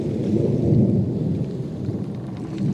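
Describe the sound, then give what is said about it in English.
A deep, continuous roll of thunder rumbles loudly through the low end, swelling slightly and then holding steady, with a faint hiss of rain underneath and no voices. “It was clear to anyone, man, nature, or other, that a storm was brewing.”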